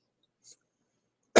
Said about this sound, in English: But excuse me for the cough, folks. I'm still coughing, as you can tell. I'm still not back to normal.